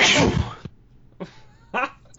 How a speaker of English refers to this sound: Sorry about that. I managed to mute the microphone before I sneezed and then unmute it.